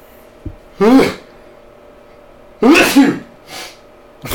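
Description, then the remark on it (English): Two loud sneezes about two seconds apart, each a sharp burst of breathy noise, followed by a softer sniff or exhale at the end. “Bless you.”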